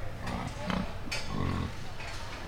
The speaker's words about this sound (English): So when we come to these shows, we class our pigs when we show them by weight. And so behind me is a scale, and I'm weighing my pig.